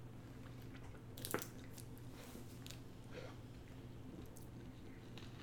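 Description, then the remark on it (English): Soda bottles of ginger ale and Sprite being opened: a sharp crack of a cap twisting off, then several soft, fizzy hissing bursts of escaping carbonation over a low steady hum. “You can hear them opening.”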